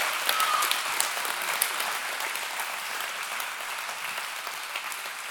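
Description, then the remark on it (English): Steady applause from a crowd for a leadership team, a dense wash of many hands clapping that holds fairly even for several seconds before easing slightly toward the end. “Would you guys give up a big, major round of applause for those guys?”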